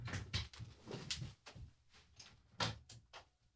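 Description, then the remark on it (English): A quick series of hard wooden clatters and thumps as a chair is accidentally knocked over and bangs against the floor, fairly loud, with no talking. “So basically, sorry about that, just knocked my chair over here.”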